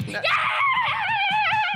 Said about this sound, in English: He doesn't say much either. He just kind of screams.